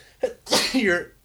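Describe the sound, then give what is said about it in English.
A single loud sneeze: a short intake catch, then a sharp, breathy burst that trails off into a voiced tail, with no talking around it. “Bless you.”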